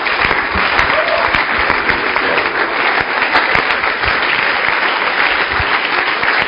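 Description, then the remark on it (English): A church audience claps steadily for several seconds to welcome their bishop. The clapping is a dense, continuous wash of many hands with no clear rhythm, loud and even throughout, with no voices standing out. “Oh, I thought you were clapping.”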